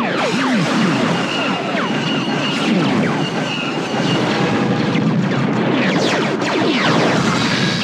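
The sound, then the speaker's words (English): A relentless barrage of Star Wars AT-AT walker cannon laser blasts, made from an old biplane motor kicking in at a very high rate, overlapping squeaky zaps sweeping up and down in pitch over a steady, rumbling engine-like roar, loud and unbroken for the whole stretch. “The cannons and the little squeaking laser sound came from an old biplane motor kicking in after being cracked up to a very high rate.”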